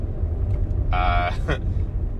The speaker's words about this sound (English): usually on my drive to work, as is the case today, so apologies for road noise and for ambient car noise.